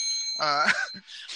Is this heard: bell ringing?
yes